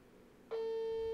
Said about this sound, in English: we're in Oklahoma and there's about to be like a tornado. Yeah. It's a tornado alarm. It's totally an alarm. It is not a good sounding dial tone at all. But I guess that's the sound it has to make to go across the country or the world.